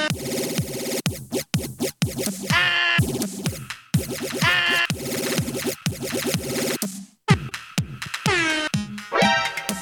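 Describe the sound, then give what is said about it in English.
A rapid barrage of loud air horn blasts, short bursts cut off and restarted over and over, some bending in pitch, forming a chaotic, blaring racket with no talking. “We took the air horn away from her.”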